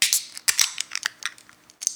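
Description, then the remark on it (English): A very full can of Märzen beer is opened with a quick run of sharp, crackling metallic clicks and hissy bursts, loud and irregular, with no talking over it. “All right, let's grab that can, grab that glass, and let's open her up.”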